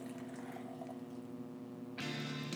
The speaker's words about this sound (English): Apparently, this can is difficult to pour from. All three of us have tried, and all three of us have spilled.